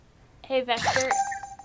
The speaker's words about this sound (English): Oh, his timer's going off.